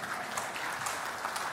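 A crowd of people clapping their hands together for the cameraman, a dense, steady patter of applause that stays at an even level throughout, with no voices standing out.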